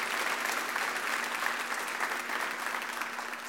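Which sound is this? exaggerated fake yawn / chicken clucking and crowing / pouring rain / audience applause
audience applause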